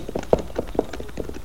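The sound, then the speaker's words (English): Quick, uneven hoofbeats clatter, a string of sharp knocks as horses named Diablo and Loco start off at a brisk pace, ridden over to look for tracks, with no voices over them. “We'll ride over there and look for the tracks.”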